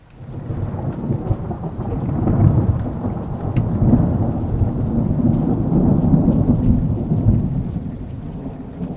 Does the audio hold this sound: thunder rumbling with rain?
yes